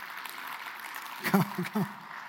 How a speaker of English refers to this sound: Come on up. That was a smattering of applause. They weren't too excited.